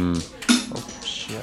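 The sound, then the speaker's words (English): Dice clatter across a hard surface in a quick burst of sharp clicks and rattles, with a voice talking over the tumbling. “There goes your dice.”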